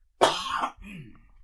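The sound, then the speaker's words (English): A single harsh cough bursts out loudly, followed by a softer, raspy throat-clearing rumble that trails off, with no talking around it. “Oh, I cough all the time now.”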